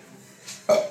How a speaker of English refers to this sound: Excuse me, burp.